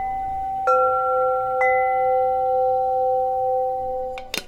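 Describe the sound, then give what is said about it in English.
Soft, ethereal wind chimes ring out in a few gentle strikes, each leaving long sustained shimmering tones that overlap and linger, with a brighter clink near the end. “Some ethereal wind chimes.”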